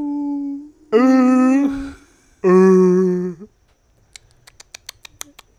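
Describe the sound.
A voice mimics humpback whale sounds, giving two drawn-out, squealing tonal calls followed by a quick run of sharp, dry clicks, fairly loud, with no other talking.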